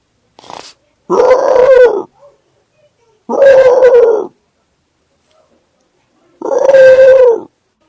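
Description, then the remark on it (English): A person imitates a dog howling, three loud, wheezy, breathy howls of about a second each, separated by short pauses, with no talking in between. “Emphysema dog.”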